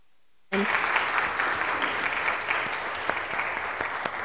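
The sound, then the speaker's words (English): Sustained applause from an audience thanking young people who shared their confirmation journeys begins abruptly after a brief silence, a dense, steady wash of many hands clapping that holds loud and even throughout. “And let's thank these lovely young people with our applause for those.”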